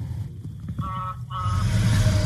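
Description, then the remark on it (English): A large semi truck passes by, its deep engine rumble swelling into a loud rushing roar as it goes past. No one speaks. “Semi drove by.”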